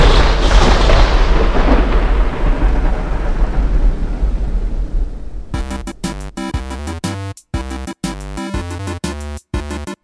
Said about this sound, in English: Cue thunder.